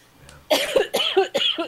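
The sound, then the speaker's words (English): A short coughing fit, a smoker's cough: three harsh, rasping coughs in quick succession, loud, with no talking around them. “Smoker's cough.”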